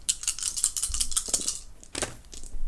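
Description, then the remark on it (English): Five dice, rolled for a pistol shot in a game, rattle and tumble across a hard surface, a rapid run of sharp clicks and clatters, settling after a couple of seconds with a few final taps. “Shoot him with 5 dice.”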